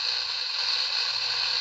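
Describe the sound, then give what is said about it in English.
Steady, unbroken radio static from a spirit box tuned to AM frequency 530 in Filer, Idaho: a bright, even hiss with a faint low rumble underneath, holding the same loudness throughout with no voices. “Right now, all we're getting is pure static.”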